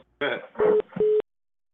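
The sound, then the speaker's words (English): Two short, steady electronic beeps, like a phone line tone, sound in quick succession, fairly loud, partly overlapping a person talking. “What the fuck is that beep?”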